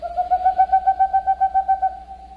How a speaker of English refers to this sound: The boreal owl, Aegolius funereus. Today's Talkin' Birds featured feathered friend.